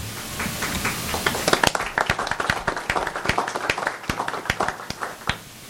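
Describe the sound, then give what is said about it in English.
A small crowd claps for the evening EVS supervisor at Highland: dense, sharp hand claps at first that thin into a looser, uneven patter of individual claps. No one speaks. “I'm surprised the nurses aren't standing and clapping for this woman.”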